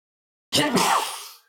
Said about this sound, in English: I've made a career of sneezing.